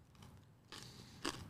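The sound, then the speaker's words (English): Someone crunching on dried apple with honey: a crackly chewing stretch followed by one sharper, brittle crunch, soft overall, with no talking. “That sounds crunchy.”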